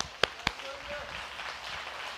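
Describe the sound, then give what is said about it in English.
Two sharp hand claps ring out in quick succession from a church audience during a sermon, then give way to a steady, diffuse murmur with no further clapping. “I should get more clapping about it.”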